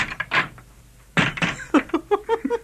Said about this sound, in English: Open the door, guard, that we may depart.